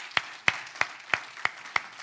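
A church audience claps their hands together in a steady rhythm at the close of a sermon, six crisp unison claps over a soft wash of room noise, with no voices heard.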